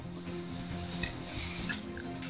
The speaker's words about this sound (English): You have cicadas in your room. Somewhere.